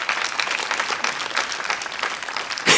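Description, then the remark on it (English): A church audience applauds steadily to thank the worship team, with dense, even clapping that holds at a moderate level throughout, followed by a louder burst near the end. “If you didn't understand it, you clap, thank you.”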